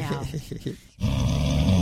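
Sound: dog snoring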